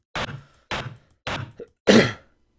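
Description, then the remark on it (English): Synthesized pink noise, a stream of random numbers with a filtered frequency spectrum that makes it softer than white noise, sounds in four short, soft hissing bursts with brief gaps between them. The fourth burst is louder and slightly longer, and no voices are heard. “Pink noise is a stream of random numbers with a filtered frequency spectrum to make it softer than white noise.”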